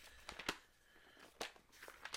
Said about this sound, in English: Y'all hear me turning pages? Because I wasn't going to do it, but I'm going to do it now. Ephesians chapter 2.